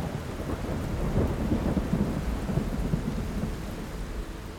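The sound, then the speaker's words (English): Heavy rain pours down steadily in a dense, continuous roar, with low rumbling that suggests a thunderstorm. No voices, just the unbroken wash of a downpour. “It was getting late and the rain was coming down hard.”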